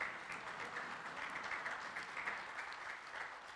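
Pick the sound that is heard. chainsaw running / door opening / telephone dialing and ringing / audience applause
audience applause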